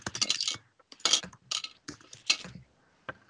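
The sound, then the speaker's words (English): Dice clatter and tumble across a hard surface in several quick bursts of bright rattling clicks, fairly loud, with a final small tap after a brief pause. “Dice away.”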